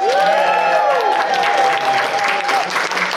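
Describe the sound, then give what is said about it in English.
A live audience at a live recording bursts into loud, sustained applause with cheering and whoops, a dense wash of clapping that holds steady for a few seconds, with a high shout or whistle rising above it early on. “We are recording live, so can you give us a big cheer so that the people at home can realise you're here?”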